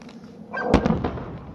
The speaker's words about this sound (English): That's how far it was. It took that long for the sound to get there. Jesus Christ. But that was the actual plane being shot. Yep. There's the missile.